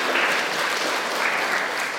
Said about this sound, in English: Clap for yourselves. Yeah, you have done really well.